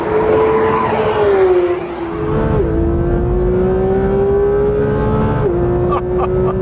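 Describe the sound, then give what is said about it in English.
A Porsche 911 GT3 RS engine howls loudly and steadily as it is driven on a lap, its pitch climbing then dropping sharply at a few gear changes. No one speaks over it. “Porsche has a ridiculous amount of fun with the chemistry set that is their 911.”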